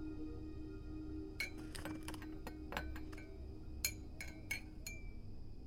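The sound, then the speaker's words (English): Light, bright clinks of a cup ring out in quick irregular clusters, a spoon or glassy tap striking several times over a steady low hum, with no voices, as tea leaves are measured into a cup while making tea in a kitchen. “As I measure out the tea leaves into my favorite cup, I pour in the just boiled water and fill it up.”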